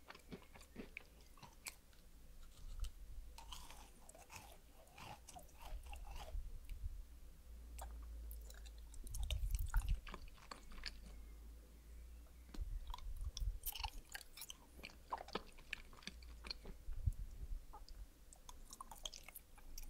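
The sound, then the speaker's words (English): Chewing of blue, yellow, orange, white, red and purple jelly ball candies: steady, irregular squishy bites and wet smacks with crisp clicks and soft low thumps, fairly quiet throughout, with no talking. “Jelly balls.”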